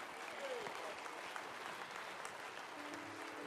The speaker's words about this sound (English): Well, come on. Why don't you clap your hands to the Lord one more time? With all of your heart, would you praise the Lord?